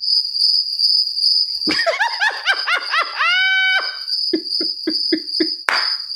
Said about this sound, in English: The crickets have spoken